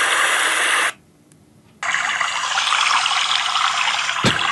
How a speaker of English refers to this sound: Let me give you a real good one. I like the waterfalls and all that. That sounds like static, but it's not.